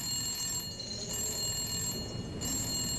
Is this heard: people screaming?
no